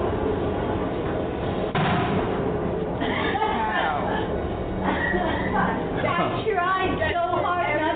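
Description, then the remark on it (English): A single sharp gunpowder blast, set off by a lit fuse to blow a wheel around, bursts out near the start over a noisy outdoor background, followed by a rumbling wash of sound and excited voices calling out. “If all goes well, I light the fuse, there'll be an explosion that will blow the wheel around.”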